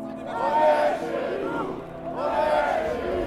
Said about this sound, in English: A chant of, "This is our home," starts elsewhere in the crowd and picks up in volume. Then it's, "Get on the plane."